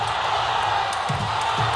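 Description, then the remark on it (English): A dense, steady roar of a large Olympic stadium crowd cheering as Bolt runs, with a couple of brief shouts rising out of the wash of noise. “The crowd's going up.”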